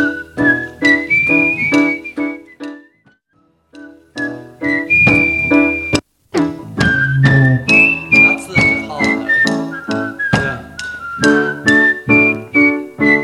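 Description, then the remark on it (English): A person whistles a simple, steady melody over rhythmic strummed guitar and light percussion, pausing briefly partway through before the tune resumes, clear. “… transplanted the idea onto the outro of …. So it should be very straight, the whistling.”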